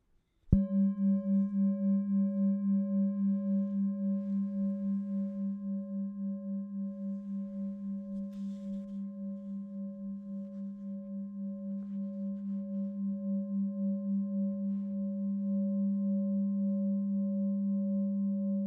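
A meditation bell is struck once and rings on with a deep, steady hum that slowly wavers and pulses, its brighter overtones fading while the low tone sustains to the end.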